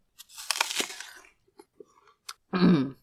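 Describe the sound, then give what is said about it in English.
A loud, crisp crunch of someone taking a huge bite of a sweet apple and chewing it as loudly as he can, followed by a few softer wet chewing clicks and a short voiced murmur at the end. “He took a huge bite of the apple and crouched there, chewing as loudly and obnoxiously as he could.”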